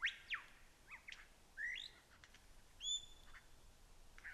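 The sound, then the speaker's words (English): A lyrebird mimics a pied butcherbird's song phrase: a short run of clear, liquid whistles with quick downward and upward slides, fairly loud, with quiet pauses between notes. “There, one of the many melodious liquid song phrases of the pied butcher bird.”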